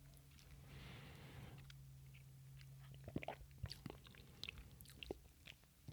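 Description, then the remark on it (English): A short slurping sip of rye whiskey, then a run of small wet mouth clicks and lip smacks as the drink is tasted, quiet and intimate with no talking. “Let me try another sip.”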